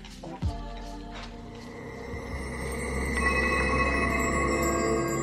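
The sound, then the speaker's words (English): Chimes ring out over a low, swelling musical drone, their bright sustained tones layering and shimmering as the sound grows gradually louder, with no voices present. “Ooh, chimes and everything.”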